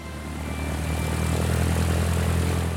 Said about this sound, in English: The engine moved two propellers, which gave the plane a lift into the air and kept it in the sky.